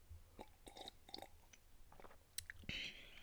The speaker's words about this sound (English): But before we do that, I'm going to take a sip of my coffee.